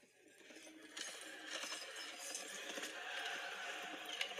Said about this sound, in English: He's like riding his horse in, right? Riding the horse in to meet the Roman troops.